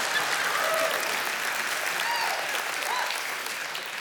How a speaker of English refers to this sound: Are we clapping or are we not? I don't know what we're doing here.